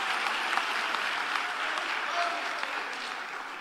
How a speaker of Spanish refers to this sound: Deja de aplaudir por un momento